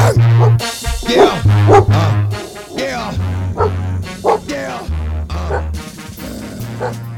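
A dog barks repeatedly in short, loud bursts over a steady musical backing with a pulsing low bass line, the barks prominent.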